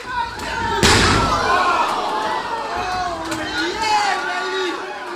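A heavy, booming thud as a wrestler, after taking a series of heavy blows, knocks his opponent onto the mat, followed by a large crowd roaring and chattering loudly throughout in delight.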